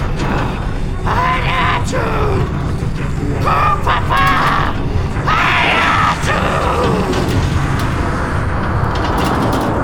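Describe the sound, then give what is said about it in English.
A woman shrieks in frenzied, wailing bursts as if possessed, three or four long cries rising and falling over a constant loud rumbling, rattling din of a shaking pot-belly stove with flames bursting through its door. “is screaming like she's possessed, and the pot-belly looks like it could explode at any second.”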